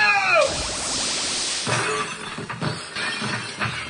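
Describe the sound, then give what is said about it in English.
A brief rising zap of energy beams shot from a radioactive monster's eyes gives way to a loud, sustained shattering crash as a crystal creature breaks into pieces, with glassy fragments tinkling and clattering as the debris settles over a few seconds. “Powerful energy beams shot from the nuclear monster's eyes and shattered the crystal elemental into 1,000 pieces.”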